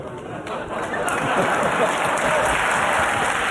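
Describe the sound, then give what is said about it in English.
A studio audience breaks into steady applause, a dense wash of clapping that swells in the first second and then holds loud and even to the end. “And now they applaud me for giving them the finger.”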